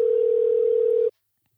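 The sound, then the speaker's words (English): A single steady phone ringing tone as a call is placed to someone, a smooth mid-pitched hum held for about a second before cutting off abruptly into silence. No one speaks. “I think we want to give a call to somebody right now, don't we?”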